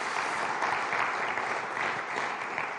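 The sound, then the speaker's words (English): Steady applause from an audience, a dense wash of many hands clapping at an even, fairly loud level throughout, with no voices standing out. “Can we just give them another round of applause for just sharing with us?”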